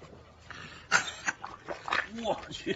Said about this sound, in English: That last clip was actually just a dog sniffing another dog's butt and then puking.